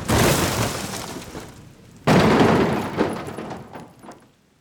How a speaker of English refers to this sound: Oh my, with a crack and a flash, the truck runs into the side and flips over, the driver onto his dash, and it rumbles and overturns into the wasteland.